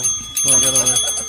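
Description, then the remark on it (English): A bright metallic bell is rung in a studio, its shimmering high overtones sustaining through the whole moment, while muffled voices chatter underneath. “Hold on. Let me ring the bell.”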